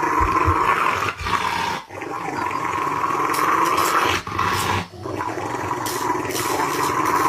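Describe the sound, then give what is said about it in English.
A dog in a video growls steadily and aggressively for several seconds, a low rumbling snarl with brief pauses, sounding slightly compressed as if played back through a device. “They have to put the dog down?”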